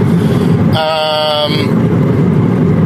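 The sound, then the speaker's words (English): Steady low engine rumble and road noise from inside a Toyota Yaris, Toyota's smallest, cheapest compact car, as it drives at 6 in the morning, with a brief high tonal whine rising over it for about a second. “It's a Toyota Yaris, which is Toyota's, like, smallest, cheapest car.”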